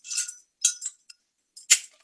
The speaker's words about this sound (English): It's their Lev Czech Lion Pilsner-style lager. It's a Czech beer. Since 1834. Yeah, that's what we got. All right. Thank you, our local international market. Yeah, let me one moment while I pop my top here.